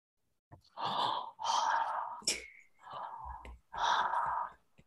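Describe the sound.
A voice imitates the heavy, menacing breathing of a movie's boogeyman: a series of loud, drawn-out breaths in and out, each lasting about a second, with brief pauses between them and no words.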